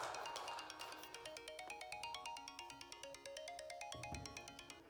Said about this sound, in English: It's my timer for me.